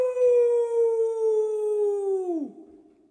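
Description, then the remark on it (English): A person lets out a long, loud wolf-like howl, holding one steady note for about two seconds before it drops and trails off. No talking is heard. “You stepping on my howl, motherfucker?”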